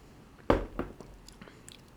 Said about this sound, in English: This stout, I didn't mention this earlier, is 7.3% alcohol. Yeah, let's give it a taste now. Oh my God. That is so good. It tastes, I'm gonna give it another sip.